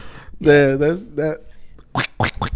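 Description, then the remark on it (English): Someone imitates a duck's quack with a drawn-out, nasal, buzzy vocal call, then follows it with three short, sharp bursts in quick succession. “I don't know how to quack, bro. All right. I tried.”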